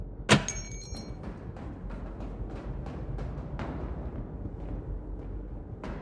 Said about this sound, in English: That's the door to the spectroscopy lab, though. Help me with this bolt?